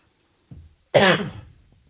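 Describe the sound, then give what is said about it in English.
A single loud cough bursts out after a soft throaty rumble, a short harsh blast that fades quickly into quiet, with no talking around it. “All right, I'm going to take my empty cough into the void as no.”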